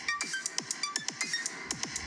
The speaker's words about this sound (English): I've been making my own beats. You want to hear? Yeah, let's hear it. Hit me with a beat. Hit me with check this out. I made this on an app on my phone. Some raw beats.